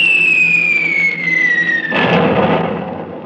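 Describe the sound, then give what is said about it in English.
A long descending whistle slides down in pitch for about two seconds, then a loud, rumbling explosion of a bomb dropped by war planes bursts out and slowly rolls away. No one speaks. “Was that what they call a bomb?”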